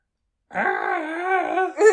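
A man's voice imitates the Wilhelm scream: a single loud, drawn-out, wavering cry lasting just over a second, followed by a brief breathy burst.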